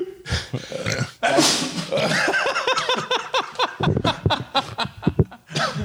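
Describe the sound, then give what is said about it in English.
A sharp, explosive sneeze after eating a hot pepper bursts out near the start, followed by a run of breathy vocal noises and chuckling sounds that continue to the end. “No, I'm sneezing, dude.”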